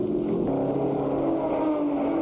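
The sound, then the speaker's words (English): A Chaparral race car engine roars, its loud, buzzing drone climbing in pitch as the motor revs up and holds a steady high whine throughout, as Jim Hall takes the car out for the final hour of the race. No voices. “But Hall's crew is prepared, and Jim takes the car out for the final hour, comfortably in first place.”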